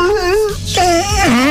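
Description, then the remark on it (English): A dog howls along to music in two long, wavering wails, the pitch sliding up and down with a brief pause between them, loud and with no talking over it. “That dog is taking its music seriously.”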